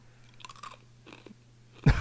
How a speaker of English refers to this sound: Crunching into the mic.